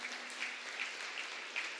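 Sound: audience clapping hands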